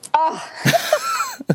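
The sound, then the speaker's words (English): A voiced, wavering intake builds into a sharp, loud sneeze burst, followed by a couple of shorter breathy bursts and a brief throaty sound. “Oh, God bless you.”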